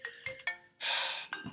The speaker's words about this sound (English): First rule of creating a podcast, silence your goddamn phone. That's on me. Rookie mistake.